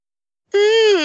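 A person yawns: a loud, drawn-out voiced exhale with a slightly sinking pitch, starting abruptly after a half-second of silence and still sounding when it cuts off.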